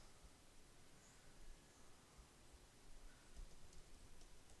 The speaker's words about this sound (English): Guys, can you hear me typing? I'm Googling because I forgot.